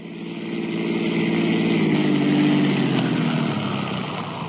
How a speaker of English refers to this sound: Dawson stopped the police car in front of my house.